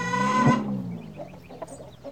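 A hen gives a loud, drawn-out squawk, then trails off into a few softer, scattered clucks and rustling noises.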